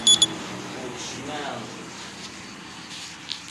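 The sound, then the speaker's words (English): A cooking timer for fish sounds two quick, high-pitched electronic beeps right at the start, fairly loud, followed by murmured voices in the background. “That was the buzzer. What buzzer? The fish cook buzzer?”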